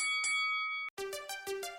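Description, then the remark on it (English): A bright bell rings to start the Matt Mania show, with sustained metallic overtones, pauses briefly, then strikes again several times in a quick, rhythmic series of ringing tones that overlap and shimmer. “Ring the bell.”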